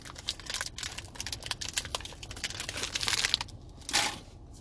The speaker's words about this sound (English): I mean, pardon me if I'm munching on a little Robert Irvine freaking protein bar. Tastes like a Kit Kat. Better for you, though.